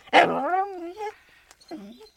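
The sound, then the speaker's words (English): A dog gives a loud bark that stretches into a wavering, whiny tail, then lets out a second shorter, softer yelp a moment later. “Ooh, I hear a dog bark.”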